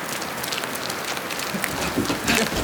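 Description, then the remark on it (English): Heavy rain pours steadily in a dark, windy storm, a dense, hissing wash of drops spread across the whole clip, fairly loud with no voices. “Oh, it's so dark and stormy! We're gonna get so wet!”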